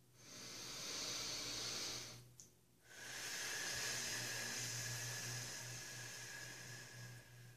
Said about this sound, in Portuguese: E vou fechar os meus olhos e vou respirar profundamente pelas narinas e soltar um suspiro pela boca.